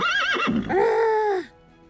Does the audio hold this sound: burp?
no